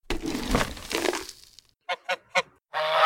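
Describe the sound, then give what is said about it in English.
A burst of rough crunching and rustling gives way to three short honks in quick succession, followed by a longer, louder goose honk at the end. “And so, for 6 or 8 weeks before, the geese were being fed, force-fed, from buckets of corn twice a day.”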